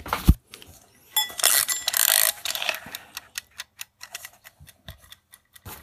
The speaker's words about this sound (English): Let's wind up the timer.